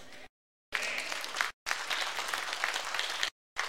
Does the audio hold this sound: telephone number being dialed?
no